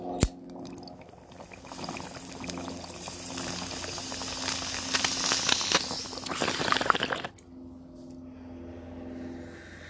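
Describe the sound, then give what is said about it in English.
Steady gurgling of water bubbling through a bong during a hit for about seven seconds, growing slightly louder before cutting off abruptly, leaving a quiet hum. “Let's take this first bong hit.”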